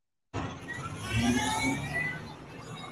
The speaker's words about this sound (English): All right. So there they go. Tow truck chasing it. Repo man. Repo man want that car. This car's about to get repoed.